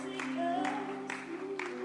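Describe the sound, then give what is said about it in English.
A group claps together in a steady beat for people as they come to the front, four firm claps about half a second apart, over sustained musical tones that carry through underneath. “Oh, clap for them as they come.”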